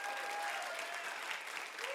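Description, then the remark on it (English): A church audience claps steadily during a clapping lesson, a dense wash of many hands applauding together at a fairly even pace, with a faint tonal hum running underneath. “Maybe just like pick up the pace a little bit on the sarcastic clap or something.”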